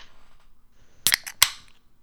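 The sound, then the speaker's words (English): A can of Twisted Tea hard iced tea cracking open: a couple of sharp metallic clicks and pops, followed by a brief hiss of fizz, with no talking over it. “do you have a cooler full of do you have a cooler full of tea again? I got some twisted tea.”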